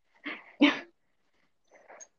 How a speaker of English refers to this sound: I'm letting that bitch in. I don't like her anyway. She keeps fucking barking.